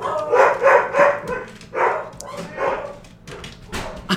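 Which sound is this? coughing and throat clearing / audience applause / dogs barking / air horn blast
dogs barking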